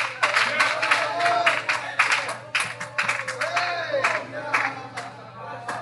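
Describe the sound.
An audience claps in praise of God, steadily in a fast, irregular patter while voices shout and cheer over it, the crowd noise staying loud throughout with a low steady hum underneath.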